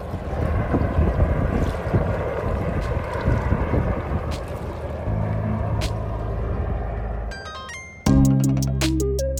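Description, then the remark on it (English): A loud, steady airboat engine roars with buffeting wind noise for several seconds during a U.S. Coast Guard and local emergency ice rescue on Lake Huron, then cuts off abruptly as tonal music begins. “In the hours that follow, the U.S. Coast Guard and local emergency responders mount a massive rescue attempt that includes airboats and helicopters.”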